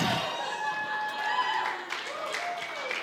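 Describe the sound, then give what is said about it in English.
A brief, modest round of courtesy applause from an audience, steady scattered clapping over three seconds with a faint murmur of voices mixed in. “Thank you for the courtesy clap.”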